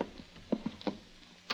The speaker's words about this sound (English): Before I could look any more, a key sounded in the door lock outside. I moved behind the door and let it open.